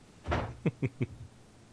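A door is pushed shut with one broad thud, followed by three quick, evenly spaced knocks as the latch settles. The sounds are moderately loud, and no one speaks.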